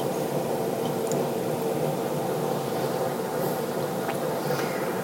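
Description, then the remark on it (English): A steady, dense rush of hissing and faint bubbling churns as water heats in a pot, almost to a boil, with occasional small pops and no voices. “All right, this water is almost to a boil.”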